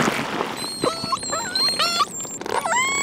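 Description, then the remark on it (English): Underwater whale calls: a run of high, squealing whistles that bend sharply up and down in pitch, several overlapping one another over a steady wash of background hiss, with no voices. “That's a whale”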